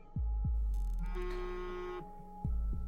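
A small rectangular device with a screen buzzes in a pocket, a steady electronic drone for about a second and a half, flanked by deep, muffled heartbeat-like thumps before and after. No one speaks.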